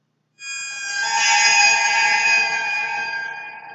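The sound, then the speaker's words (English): A water phone rings out in a sustained, eerie shimmer of overlapping metallic tones that swell to a peak and slowly fade, with no voices present. “It was just the water phone again!”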